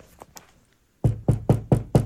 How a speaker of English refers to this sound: Knocking on doors. Knowing what could be inside.